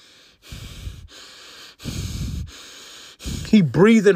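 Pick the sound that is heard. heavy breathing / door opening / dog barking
heavy breathing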